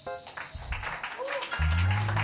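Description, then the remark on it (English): A crowd applauds the teachers in a steady, dense patter of clapping that holds for a couple of seconds, mixed with scattered voices and a low sustained hum underneath. “But do you know the people I want us to clap for? The teachers.”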